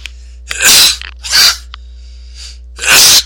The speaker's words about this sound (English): I'm going to sneeze.